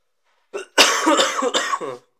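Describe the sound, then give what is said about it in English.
A harsh coughing fit from a long-lasting cough: a short initial hack followed by a longer, raspy run of several chesty coughs, loud and with no other sounds. “Man, I've had this fucking cough for so long, and it is starting to really bug me a little bit.”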